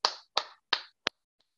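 Hands clap three times in a steady, even rhythm, each sharp smack trailing off briefly, then a tighter fourth clap and a faint last tap. No one speaks.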